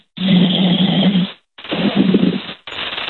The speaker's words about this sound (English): I love this. This might be one of my favorite bits we've ever done where we keep someone on the air through the entire show just snoring.